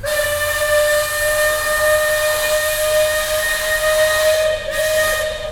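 The steam whistle of the Liberty Bell riverboat blows one long, steady, loud blast, a bright, slightly breathy tone over heavy hissing steam, wavering briefly near the end before carrying on. No one speaks.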